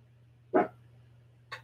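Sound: dog barking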